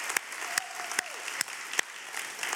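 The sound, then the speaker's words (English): A large crowd claps steadily and continuously, celebrating 192 people baptized the previous week, a dense wash of applause with a few sharper claps standing out, no voices rising above it. “Now you can clap. Come on, celebrate them.”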